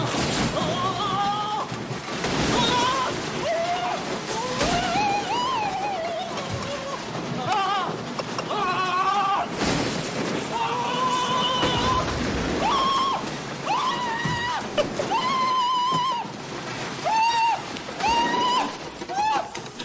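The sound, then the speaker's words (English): Scream sound effects from a library, including Marv's nervous-breakdown scream from the film Home Alone, performed by Daniel Stern: a rapid series of high, wailing screams, one after another with rising and falling pitch, over a steady hiss of background noise that stays loud for the whole stretch. “And there's always time to have some more screams added to the library.”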